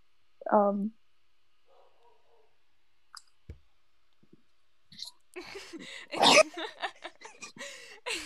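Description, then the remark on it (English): The speaker's own dogs bark in the background: one short bark near the start, a few faint clicks, then a flurry of sharper, noisier barks crowding together toward the end. “Oh my gosh, my dogs are barking.”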